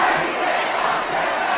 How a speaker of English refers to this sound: On the count of three, we're going to scream Cardi, take Offset back. 1, 2, 3.